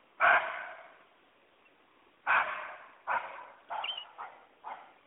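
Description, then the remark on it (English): An Indian muntjac's hoarse, raspy barking alarm call, repeated about six times in harsh, screaming bursts with uneven gaps, loud, with no voices. “The sound name, it's a high-pitched, hoarse kind of scream.”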